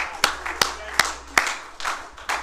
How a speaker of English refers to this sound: Praise the Lord. I think you ought to give the Lord a hand clap for that tonight. Hallelujah.